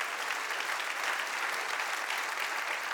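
A church audience claps together as a clap offering to the Lord, sustained, dense applause, many hands at once, steady and fairly loud throughout with no voices standing out.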